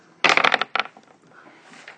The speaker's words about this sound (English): So, you can make an academic at 10 if you want to. I'll let you make an academic at 10. Sure. If you got it, roll those dice.